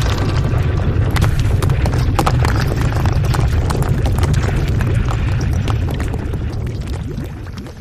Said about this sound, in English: I just heard something. A rumble. A rumble? Cup, you think the horse hitting the walls was... Cover your head, Ringo! It's a cave-in!